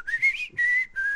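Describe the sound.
Someone whistles an imitation of the Samsung whistle notification sound, a bird whistle: three bright notes, the first sliding upward, the next two held steady, ending in a sudden breathy burst of noise.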